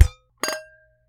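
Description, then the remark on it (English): Two quick clinks of cups tapped together in a toast with wine, one of them a plastic Starbucks to-go cup, each a short bright knock with a brief ringing tail fading within a fraction of a second, no voices. “And I've got like a cup, but it's plastic, so it's not going to cheers well.”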